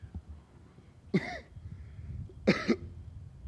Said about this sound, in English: Ooh, excuse me. I'm gonna have to cover that cough.